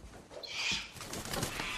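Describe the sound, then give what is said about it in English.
A bird calls once in a short, bright burst, followed by soft fluttering rustles, alone with no talking. “Is that your bird?”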